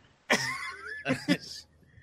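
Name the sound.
deliberate cough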